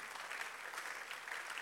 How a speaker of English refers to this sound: This is a progressive church. Every time I come, I see something new. You've got to applaud yourselves for what I see.